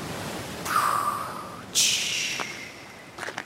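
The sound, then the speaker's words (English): Two waves surge in one after another onto a beach covered in smooth, round pebbles and little rocks, each a loud, hissing rush that slowly fades, followed by a brief rattle of pebbles at the end. “Can you hear the waves?”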